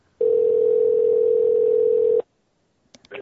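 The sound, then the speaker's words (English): A steady, loud telephone dial tone, heard while a call is being placed, holds a single pitch for about two seconds, then cuts off abruptly; a few short faint clicks or tones follow after a brief silence. “We're gonna call this guy.”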